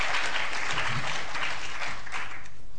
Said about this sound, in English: So let me ask you just to give a little round of applause to our speakers before they say anything. Thank you.